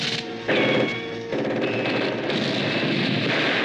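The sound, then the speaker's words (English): A loud, dense barrage of cinematic explosions and blasts from an 1980s movie trailer rumbles on without pause, layered with a ringing, music-like tone, all booming. “There's so many explosions, guys.”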